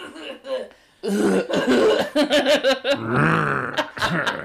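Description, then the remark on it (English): A person imitates a raspy smoker's cough: rough, throaty growling sounds followed by a quick run of harsh hacking bursts, fairly loud. “So people like to think if maybe he's not growling, but he's coughing from being a cigarette smoker.”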